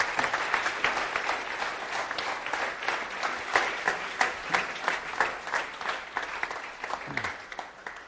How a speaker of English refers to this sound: You guys give a round of applause.